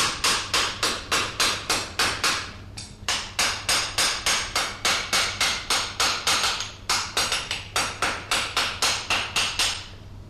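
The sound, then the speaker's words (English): A farrier who shoes horses for the Metropolitan Police at Hammersmith hammers nails into a horseshoe: rapid, ringing metallic blows at a steady quick rhythm, in three runs separated by brief pauses, over a faint low hum. No one speaks. “go into the shoe? Well, seven in most of them. In the very small ones, your small feet, six.”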